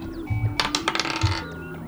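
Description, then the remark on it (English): A quick burst of hard plastic clicks and rattles as blue dice tumble across a table, rolled for a melee spell attack in a tabletop role-playing game, lasting under a second and settling quickly, with a low steady hum underneath and no talking. “I'm gonna use the blue dice.”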